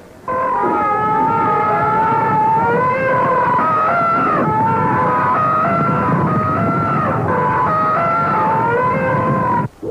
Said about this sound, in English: An elephant stampede in Africa.